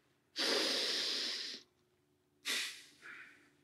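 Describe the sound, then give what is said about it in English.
A deep, slow diaphragmatic breath in through the mouth, a long airy rush, followed after a pause by a shorter, breathy exhale that trails off softly. Clear, with no talking. “It flattens on the inhale, sort of flattens, stretches on the inhale, and relaxes on the exhale.”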